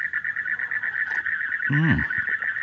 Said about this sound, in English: Oh, listen to those frogs.